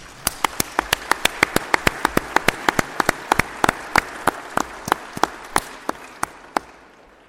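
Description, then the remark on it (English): A round of applause for young people who worked hard during a conference, made of sharp, distinct claps in a quick, even rhythm that gradually slows and thins out toward the end, with no one talking. “Now I just want to go off a little bit at a different angle, on a different angle, and say we need to give a huge round of applause to all our young people from here for the hard work that they did during this conference.”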